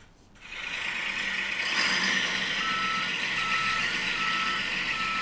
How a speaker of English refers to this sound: Why don't we get this garbage truck around the corner, and it's time to take out the trash. We may need two trucks this week because we got a big pile coming on.